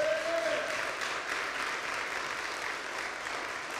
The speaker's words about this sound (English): Could we please give them a round of applause?